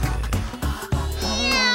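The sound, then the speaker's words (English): A person does a drawn-out, cat-like meow, a loud vocal cry whose pitch bends and rises, with a couple of brief voiced bursts before it. “You actually sounded like one of your cats when you did it that time.”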